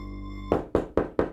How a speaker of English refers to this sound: Knock knock, Mariela. But before Mariela can answer...